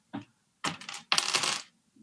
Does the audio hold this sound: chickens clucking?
no